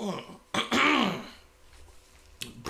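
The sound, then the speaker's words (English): Someone clears their throat after too big a sip of bourbon: a short rasp, then a louder, gravelly rumbling hack, followed after a brief pause by one more quick clearing burst. No speech. “Too big of a sip. When I drank bourbon to clear my throat, which I think is a bad idea.”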